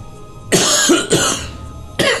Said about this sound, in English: I've got a cough for you.